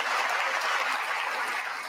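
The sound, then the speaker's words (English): Steady, dense applause from a crowd, many hands clapping at once into a continuous crackling wash that stays loud throughout without breaks or voices on top. “open hand clap.”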